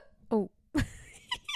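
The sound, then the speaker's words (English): A single short, squeaky hiccup sounds, followed by a sharp breathy burst and a few faint vocal noises. “There's a hiccup, sorry.”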